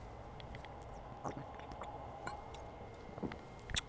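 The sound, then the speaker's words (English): Quiet mouth sounds of someone sipping beer very close to the microphone, with a few soft slurps and wet clicks spread over a few seconds against a low steady background hum, no talking. “Let me sip this beer real quick and we'll keep going.”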